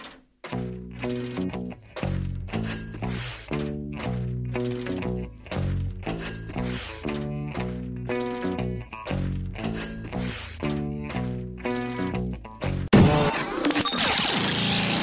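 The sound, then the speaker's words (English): Bright metallic clinks tumble in a steady, rapid rhythm like coins dropping one after another, ending in a noisy rush of jingling. Loud, with no talking. “Speaking of Tough Cup coins, I want to fill you guys in on how you get those, how you can accumulate coins throughout the seasons”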